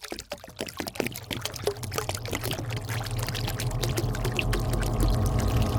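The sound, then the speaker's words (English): Water pours steadily from a canteen and splashes onto a hard floor in a doorway, forming a moat around the man pouring, starting with a few sputtering glugs, then settling into a continuous splattering stream that grows fuller toward the end. “He poured a moat around himself in the door.”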